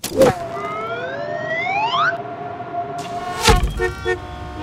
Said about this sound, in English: Oh, do you hear that? That's the Jumble Bumble of the slot machine.